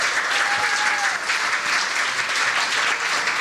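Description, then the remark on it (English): A theatre audience at the Black Box Theatre, at the Northern Ireland Science Festival, gives the guests a sustained round of applause, dense steady clapping at an even loudness throughout, with a faint whistle briefly rising over the clatter near the start. “Give them a massive round of applause, and our guests.”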